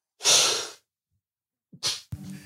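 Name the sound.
sneezing fit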